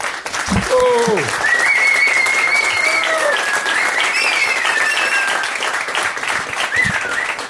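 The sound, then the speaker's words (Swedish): Loud, sustained applause from a large audience at an afternoon event fills the whole recording, dense clapping with a few high whistles or cheers rising above it. “Och det fick vi applåder också.”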